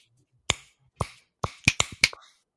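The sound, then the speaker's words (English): Crisp, loud finger snaps held up to the microphone, with no talking: three evenly spaced snaps, then a quicker flurry of three or four more sharp clicks, each ending abruptly. “I'll do a finger snap, we'll see how loud it is. I'm going to hold it up to the mic.”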